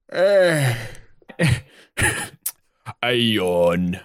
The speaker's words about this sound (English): I do yawn sometimes when I am alone.